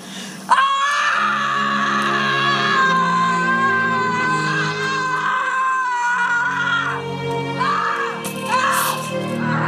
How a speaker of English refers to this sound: Misha Barton couldn't let out a scream loud enough, so they just clipped in the audio from Home Alone when Kevin McAllister slaps some aftershave on his face.